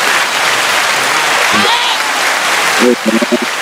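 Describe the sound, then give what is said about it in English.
Steady, dense, loud hand clapping for fertilized grass, with a couple of voices briefly calling out over it near the middle and end. “We got to clap for the fertilized grass.”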